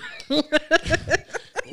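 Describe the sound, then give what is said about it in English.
A voice imitates a fit of coughing after smoking weed: about six quick, rough bursts in a rapid, uneven rhythm, moderately loud, with a somewhat laugh-like, voiced quality. “And then I coughed.”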